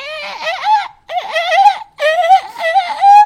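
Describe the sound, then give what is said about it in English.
A person imitates a sheep with three wavering, nasal bleats, each loud and quavering, separated by brief pauses; the last ends on a higher, drawn-out note. “It is a sheep.”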